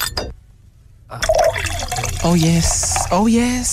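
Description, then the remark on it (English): Beer glugs into a glass in a couple of quick bursts as someone pours themselves a beer, the bubbling pour rising in pitch as the glass fills, with a brief clink and fizz at the start. “I'm just going to pour myself a beer.”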